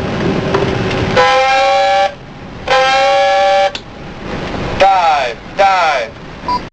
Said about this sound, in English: Chief of the watch on the 1MC. Pass the word. Dive, dive. Sound two blasts of dive alarm. Pass the word. Dive, dive. Dive, dive.